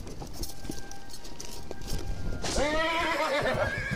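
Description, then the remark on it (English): Hooves clip-clop in a steady, uneven patter, then a horse lets out a loud, quavering whinny that ripples downward while the hoofbeats continue underneath. No one speaks. “And with a gentle kick on the horse's sides, they pranced out through the open gates of the city of Delving Downs and into the world beyond.”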